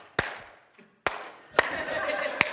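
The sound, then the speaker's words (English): Four sharp claps land at uneven intervals, roughly a second apart, with a soft murmur of voices and tonal background sound filling in behind the later ones. “I mean, can we like get a recording of people clapping?”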